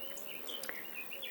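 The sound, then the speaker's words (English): Faint, steady insect buzzing and ticking fills the background, a dry high-pitched rasping from grasshoppers in grass, with a few brief chirps scattered through and no voices. “The main ones we've got here are the common green grasshopper, field grasshoppers, which are the multicoloured ones.”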